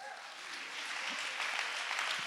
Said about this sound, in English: Let's all clap our hands.